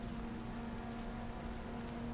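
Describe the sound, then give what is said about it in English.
Steady rain from a storm pours down in an even, unbroken hiss, with a faint low hum running underneath and no voices. “And the good thing about it is this storm going, it's going to feed in quite nicely with it as well.”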